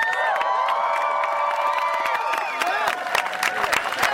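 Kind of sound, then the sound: crowd, crowd applauding and cheering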